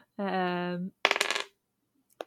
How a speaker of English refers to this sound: I don't have a D3, but I can roll a D6. It's totally valid.